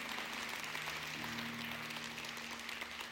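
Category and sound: crowd, audience clapping hands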